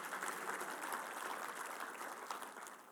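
An audience gives a hand clap of praise to God, applauding steadily for about three seconds, many hands clapping at once into a dense, crackling wash of sound that stays loud throughout with no voices.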